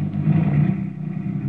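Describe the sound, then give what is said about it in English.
A car engine hums steadily with a low, rumbling drone that eases slightly as the vehicle pulls away. No voices are present. “Then the car moved on.”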